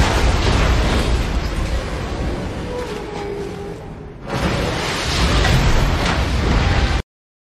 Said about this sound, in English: What they just showed, for those of you on the podcast, was the car exploding off of the deck of the barge.